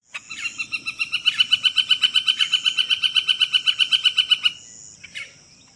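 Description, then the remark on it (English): A northern flicker gives its laughing call: a long, loud, rapid series of identical sharp notes that swells slightly, runs about four seconds, then stops, with a faint call after. “I'll go ahead and play them for you. Here's the northern flicker one.”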